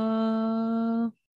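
The tone of a phone call connecting to an iPad and then hung up: a steady, buzzy electronic drone holds for about a second, cuts off abruptly, and after a short silence a sharp, pure beep sounds. No one speaks.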